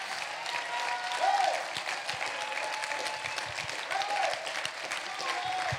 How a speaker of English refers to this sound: Come now. Go ahead and clap for them as they come.